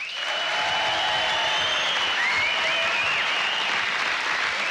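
Sustained applause for a drummer from a large concert audience, a dense, steady wash of clapping with faint whistles and cheers rising through it, loud and even throughout.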